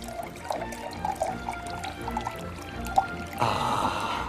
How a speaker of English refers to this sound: Are you pouring a Guinness or is someone peeing? A little bit of both.